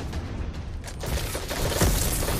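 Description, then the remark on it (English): A dense, rumbling video game Thunder Crash super impact effect builds over a couple of seconds, peaking in a heavy low-end boom with crackling, bursting noise layered on top. No one speaks. “Thunder crash.”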